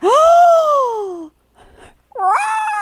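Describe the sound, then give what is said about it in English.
A voice imitates a Godzilla roar with two loud, drawn-out wailing cries, the first sliding downward, the second rising then holding. A breathy pause separates them; it sounds more like a yowl than a roar. “This is the worst Godzilla sound ever.”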